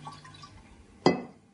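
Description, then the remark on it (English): A brief, sharp gush of water, about 300 millilitres, poured into a funnel inserted in a baby's mouth, fairly loud, rising suddenly out of a quiet hiss and fading within half a second; no one speaks. “He drinks through a funnel, and I'm going to insert the funnel into his mouth, and then I'm going to pour in about 300 millilitres of water.”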